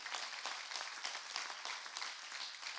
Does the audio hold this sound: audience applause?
yes